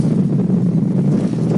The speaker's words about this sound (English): You can hear the waves lapping.